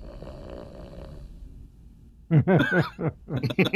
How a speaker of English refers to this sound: Snoring.